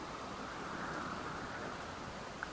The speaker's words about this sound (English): It is chucking down with rain. It is blowing a gale. It's starting to turn snow, and the fog is rolling in.